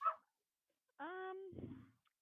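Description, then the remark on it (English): A small dog yaps a couple of times in the background, faint: a short sharp bark, then a longer whiny bark trailing off into rougher noise. “Hopefully you can't hear this little tiny dog that's just barking his head off.”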